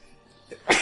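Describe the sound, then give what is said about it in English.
A single sharp, loud sneeze bursts out near the end, after a brief quiet lead-in with a faint intake of breath just before it. “Bless you.”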